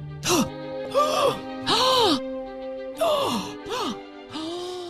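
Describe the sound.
A supercut of a person's heavy breathing played on calls: five or six loud bursts, with breathy gasps and voiced groaning exhales spliced one after another, over a faint steady tone in the background.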